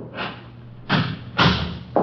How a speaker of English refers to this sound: Close the door there.